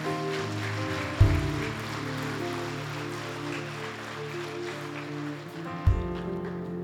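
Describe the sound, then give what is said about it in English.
A crowd claps steadily after a prayer in a dense, crackling wash over sustained musical chords, with two deep booming thumps punctuating the applause. “Come on, let's clap.”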